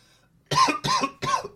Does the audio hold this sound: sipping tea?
no